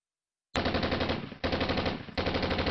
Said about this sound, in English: Yeah. No way. That's gunshots.